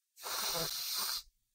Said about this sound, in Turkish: Hazırım. Derin nefes al.